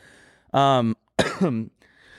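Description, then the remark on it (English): A person clears their throat in two raspy, voiced bursts, the second sliding downward in pitch, separated by a short pause with quiet background around them. “I got a frog in my throat.”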